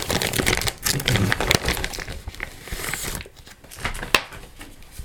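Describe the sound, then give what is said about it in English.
A sheet of photographic paper is handled, crinkling and rustling steadily for a few seconds before quieting, with a single sharp tap near the end. “What I'm going to do now is get another bit of that paper.”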